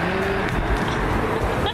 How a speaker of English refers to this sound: There's a car that's driving by.